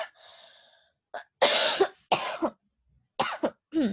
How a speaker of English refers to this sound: Oh, my God. I think I laughed too much earlier, so, like, I need a cough.